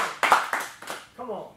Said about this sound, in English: Come on, clap your hands right there at home.